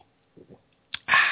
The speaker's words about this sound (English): I'm drinking this wine right here and right now on this show. Let me take a sip.